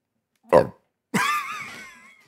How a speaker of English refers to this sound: You just made me think so hard I burped.